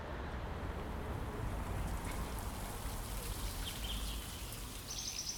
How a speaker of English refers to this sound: feeling the intoxicating heartbeat of the forest with its cicadas, frogs and beating rain, like standing in a full-on shower, separated only by insect screen and slats of window blinds.